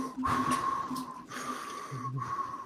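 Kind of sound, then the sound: vocal imitation, imitated deep heavy breathing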